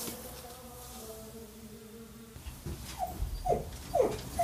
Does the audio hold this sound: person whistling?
no